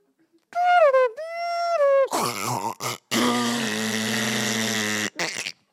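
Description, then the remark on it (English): A voice mimics a dial-up modem, starting with a few warbling, whistled tones and breaking into a loud, raspy hissing screech that runs for several seconds with brief gaps. “So, oh, do you guys remember the modem noises?”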